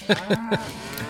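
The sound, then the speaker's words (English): Three short cow moos in quick succession, each a brief harmonic bellow, followed by a quiet stretch with no talking. “So it's a haven for gamblers if you want to bet on this, if somebody could hit a cow that's standing still at 50 paces.”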